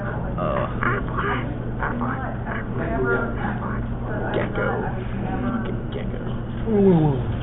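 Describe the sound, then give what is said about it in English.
Amid overlapping conversational voices, someone does a nasal, drawn-out imitation of the Aflac commercial duck quacking "Aflac", a honking squawk that comes near the end and stands out above the chatter. “I like the Aflac duck better.”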